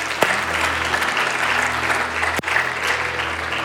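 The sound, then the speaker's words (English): An audience at a Christmas morning Christian worship service breaks into sustained applause, a dense, steady wash of many hands clapping from start to finish with no voices rising above it. “You can clap.”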